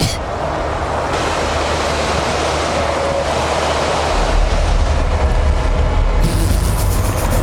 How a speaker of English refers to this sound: Okay, snowplow.